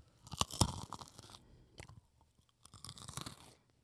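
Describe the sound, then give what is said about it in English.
Crisp crunching and chewing of a cashew cluster, with a few sharp bites up front followed by quieter rhythmic chewing and another burst of crunches, no talking. “Those are good crunches.”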